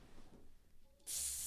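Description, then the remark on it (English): A voice imitates hissing steam: after a second of near silence, a sudden loud, bright, breathy hiss starts and holds steady to the end. “Can you do one more steam impression? Against the mic?”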